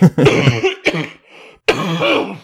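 A fit of harsh, raspy coughing: two loud, voiced hacks, a quieter wheezy breath, then a longer throaty cough. No one speaks.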